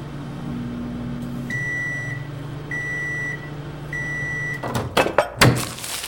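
A microwave heating a bag of sweet popcorn hums steadily, then gives three evenly spaced high beeps, followed by a few sharp clunks as the door is popped open.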